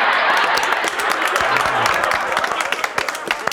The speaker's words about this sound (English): I can't remember the last time I clapped for a commercial break.